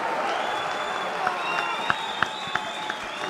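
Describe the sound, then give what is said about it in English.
A stadium crowd roars and applauds as Mitch Harvey kicks a set-shot goal from about 35 metres in a North Adelaide versus West Adelaide football match, a dense, steady wash of noise with sharp individual claps popping out at regular intervals and thin whistles drifting above. “You'll hear the crowd if it goes through.”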